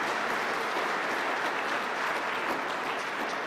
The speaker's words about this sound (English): Yeah, you can give him a round of applause. That's brilliant.